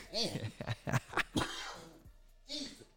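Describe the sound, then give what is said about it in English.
A fit of harsh coughing: several rapid, raspy coughs in an uneven burst, a short lull with throaty rasping, then one more loud cough near the end. “Had to give no old cough button.”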